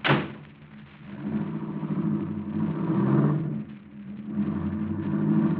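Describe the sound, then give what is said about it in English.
A car engine rumbles and revs, its low drone rising and falling as the vehicle pulls away, steady with no voices. “Then you better slip over here and drive this car.”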